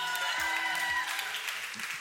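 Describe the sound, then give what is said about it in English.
A church audience at a morning service, picked up by crowd mics, applauds and calls out in a steady, dense wash of clapping and scattered voices, with a few low tonal notes sounding underneath. “Now, we have crowd mics, so y'all are making a lot of people online jealous right now.”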